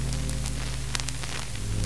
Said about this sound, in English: the EVP recorder was running. It generates a static sound